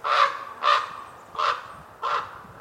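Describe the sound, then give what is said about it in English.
Four harsh, croaking raven calls in a steady series, each a short broad burst, clear with no talking, outside the city. “Being in the city, you don't see too many ravens, but come out here, you see all these ravens and the way they interact with each other, especially on windy days, they like to play with each other and fly with each other.”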